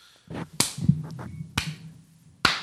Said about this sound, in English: Is that good? Just get a big one. Yeah, that was a bitch slap. That's how bitches clap.